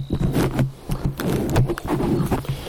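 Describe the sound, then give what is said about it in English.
Fuzzy, scratchy rubbing and soft thumps as a foam windscreen is shifted on a microphone beside a herd of cattle on a farm, coming in irregular bursts over a low rumble, with no one speaking. “Had to move the windscreen.”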